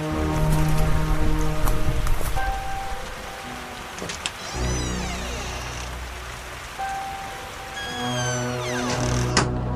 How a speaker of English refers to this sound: I hope that door sound wasn't too generic.